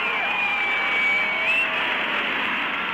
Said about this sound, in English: There's Mrs. Kennedy and the crowd yells and the President of the United States.